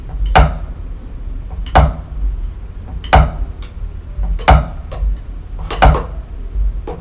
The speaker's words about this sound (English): So here's my whip. I'm whipping with the wrist. So on the way up, I'm gonna steal a tap. Watch this.